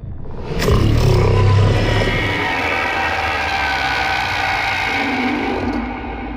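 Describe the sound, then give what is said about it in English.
A strange, loud roar at the end of a game video, called the Thargoid Roar, bursts in abruptly and holds steady for several seconds, a deep rumbling drone layered with harsh metallic grinding and faint high whine, with no voices. “At the end of the video, there's a strange sound that some in the less than mainstream media have called the Thargoid Roar.”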